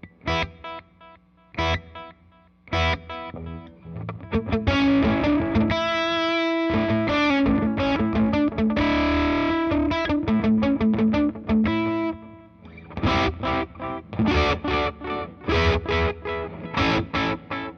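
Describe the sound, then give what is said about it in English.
Electric guitar with delay repeats fed into a distortion pedal, the repeats smearing together, sustained crunchy chords swelling into a dense wash, the first repeats heavily distorted and the last ones cleaner, then choppier, cleaner stabs near the end. No voices. “The distortion actually makes the level of the delays do kind of funky things.”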